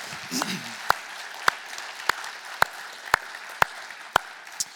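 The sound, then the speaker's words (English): A church audience applauds a man one morning, a steady dense wash of many hands clapping, with a few sharper claps standing out at a regular, almost rhythmic beat throughout. “So can we just give him a round of applause this morning?”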